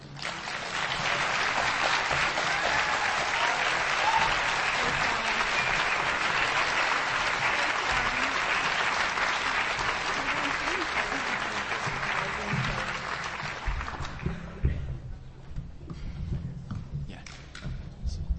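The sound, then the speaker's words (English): A large church audience applauds steadily for about fourteen seconds, a dense wash of many hands clapping, then the applause thins out and fades, leaving scattered claps and soft background noise. “How about another round of applause”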